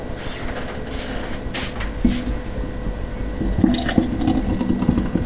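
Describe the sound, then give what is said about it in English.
Thick eggnog glugs out of a bottle into a glass after the bottle is shaken, with soft gurgling pulses and a few bright splashy bursts, and no talking. “Sometimes it's so thick it's hard to hear it pour.”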